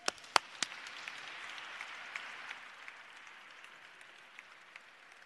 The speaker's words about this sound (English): And before I start, how about another round of applause